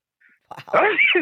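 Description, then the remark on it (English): A single sharp sneeze bursts out, a brief noisy intake followed by a loud, voiced exhalation lasting under a second, with no talking around it. “Bless you.”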